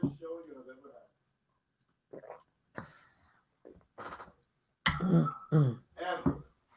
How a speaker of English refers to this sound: I had a little bit of a cough, like... I can't believe I have to cough. Why do I need to cough? Why do I need to cough now? Now, during the middle of a show?